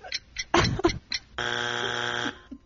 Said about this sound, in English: And when you're under pressure like that, hearing that little buzzer or the little tick. Oh, my gosh. It just throws you off.